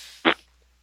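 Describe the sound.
A single short, buzzy mouth fart made on purpose, a quick blat of lips imitating flatulence, loud against otherwise quiet background and lasting only a fraction of a second.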